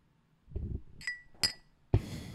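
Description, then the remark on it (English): Three people clink real crystal glasses together three times in quick succession, each a bright, ringing tap, with some low handling noise and shuffling between the strikes. “I'll clink my crystal glass to that.”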